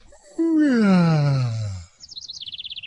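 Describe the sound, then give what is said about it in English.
A voice lets out a long, loud groan sliding downward, then switches to a quick run of high, repeated chirps imitating birds singing on waking on a summer morning, fairly loud. “This Bird Won't Shut Up”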